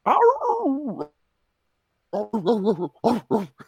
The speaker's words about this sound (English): Barking.